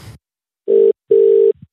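A telephone call ringing as a call is placed to a guest: two steady, mid-pitched buzzing tones, a short one then a longer one after a brief gap, framed by faint clicks, with no one speaking.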